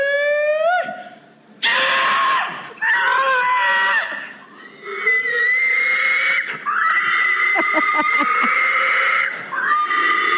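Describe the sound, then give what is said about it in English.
A man from Seymour, Illinois belts out a loud, piercing hog call, his voice squealing and wheezing like a pig in a series of drawn-out, pitch-sliding cries with brief breaths between them. “Come on, piggy.”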